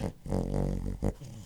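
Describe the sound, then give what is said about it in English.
A sleeping dog named Tuesday snores: a long, low, rumbling, faintly growly drawn-out breath, then a short sharp snort and a softer murmur trailing after. No one speaks. “Tuesday's asleep in between us, so that was her snoring.”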